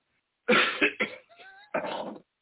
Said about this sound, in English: Are you okay? No, I actually am getting over this awful fucking cold and cough.